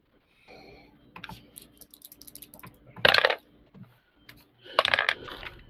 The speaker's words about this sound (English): Got to roll some dice. You do got to roll some dice. Yep. Let's see. Those are those dice.